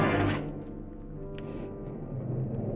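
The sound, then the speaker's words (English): A highball glass smashes against a hard floor in one loud, bright burst, followed by a few faint, scattered crunches as the shards are ground under a heel, with no voices. “the highball glass. I smashed it to the floor and ground it with my heel.”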